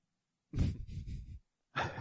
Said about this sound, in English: I said through a yawn. I'm sorry. How am I yawning in the middle of a podcast?